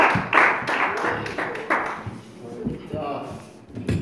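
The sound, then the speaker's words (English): A church audience gives a big hand clap of praise for a preacher coming up to speak, a dense, steady burst of hand claps that lasts the whole stretch, with murmuring voices mixed in underneath. “Let's give him a big hand clap of praise when you come and give us the word of God.”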